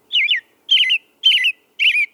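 A woodland bird sings four short, warbling whistled phrases in an even rhythm, each separated by a brief pause. The song is clear, with no other sounds around it.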